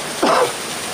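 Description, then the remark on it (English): A steady hiss of rain falls throughout, with a brief louder swell of splashing noise early on. No one speaks. “All right, there comes the refreshing rain that we knew was coming.”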